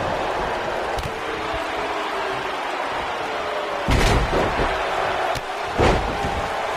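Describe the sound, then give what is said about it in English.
A heavy slam booms over a loud, roaring crowd as wrestler Stinger knocks Yoko down onto the ring mat with a clothesline, followed by a couple more thuds and sharp impacts as the arena noise swells. “Oh, but Stinger with a clothesline knocks Yoko down.”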